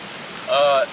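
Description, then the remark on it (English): Steady rain falling outdoors makes a continuous soft hiss, and a short, clear, whistle-like tone briefly rises above it near the middle before fading. “I've been here 4 days, and it hasn't rained at all. And now, the second, we're like, why don't we record a podcast outside?”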